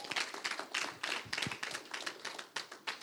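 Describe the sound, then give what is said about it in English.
An audience claps in a steady burst of many overlapping hand claps, bright and crisp, holding at an even loudness for a few seconds with no voices over it. “That's right, you can clap on that.”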